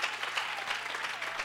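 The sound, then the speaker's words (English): A church audience claps hands in praise to the Lord in a steady, dense burst of applause at an even level, many hands overlapping with no voices standing out. “Give the Lord another real good hand clap of praise.”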